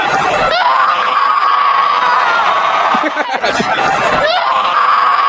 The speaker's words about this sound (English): I know this was done on a recent podcast, but here is Kat Zingano's scream. After she beat, was it after she beat Nunez or after she beat somebody? I think it's Nunez.